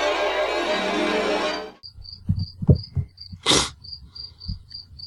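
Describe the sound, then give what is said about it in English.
A cricket in a room chirps in a steady, evenly spaced rhythm, following a burst of loud hiss at the start, with scattered low knocks and a short noisy rustle underneath. “You should just, like, take a loop of that cricket, too, for when, like, we have something funny to say we think is crickets should.”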